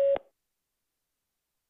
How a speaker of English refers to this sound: Please record your message. Record after the tone. Hit any key when you're done.